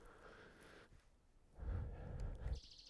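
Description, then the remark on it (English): Faint, distant bird calls with some return calls, a brief high-pitched call at the end, heard over low rumbling wind or handling noise in an otherwise quiet outdoor setting. “There's some return calls.”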